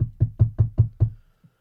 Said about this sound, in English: let's knock on the door and see if Tom's there